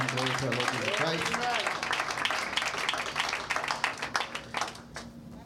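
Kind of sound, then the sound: crowd, audience applauding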